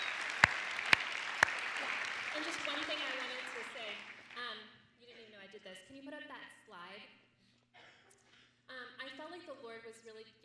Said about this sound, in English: So praise the Lord. Anyone could clap at this moment of time and thank the Lord for that.